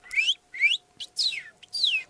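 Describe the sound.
A person whistles a cardinal-like birdsong: four clear, loud slurred notes sweeping downward, each about a quarter second long, evenly spaced, with no talking.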